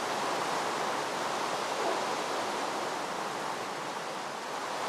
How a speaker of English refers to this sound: It's a thunderstorm!